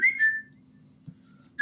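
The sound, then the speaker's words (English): Someone whistles an imitation of a Twitter notification: a quick high rising chirp sliding into a brief held note, then a pause before another short, high whistled chirp. “I was just going to say my favorite one is imitating like the Twitter notification.”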